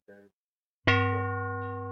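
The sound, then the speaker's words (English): A short, faint tone is followed by a loud bell sound effect striking once and ringing out with a sustained, slowly fading resonance. No one is talking. “That go that bell, man.”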